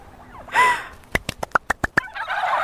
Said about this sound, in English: Might I suggest you add tryptophobia to your CV in future, which I believe is a fear of turkeys. I think I'm developing this fear of turkeys right now.